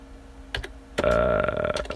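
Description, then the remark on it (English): Computer keyboard typing while someone searches for something: a handful of sharp, irregular key clicks scattered over two seconds, with a brief denser burst of keystrokes in the middle. No one speaks. “You can hear me typing right now in a desperate attempt to find this.”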